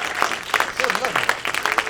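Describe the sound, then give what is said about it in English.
An audience at a screening of the documentary film Morning Sun applauds steadily for about two seconds, a dense crackle of many hands with a few voices calling out and whooping over it. “Yay, you can give yourself a round of applause.”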